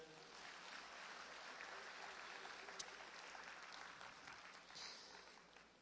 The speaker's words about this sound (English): Can we bring out my props on stage? Come on. As they come out, can you clap your hands for them?